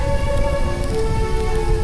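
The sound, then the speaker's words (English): A blazing Yule fire in a fireplace crackles and roars with a dense, steady rush of pops and hiss, while a faint sustained tone hums underneath, and no one speaks. “Don't you love a roaring fireplace?”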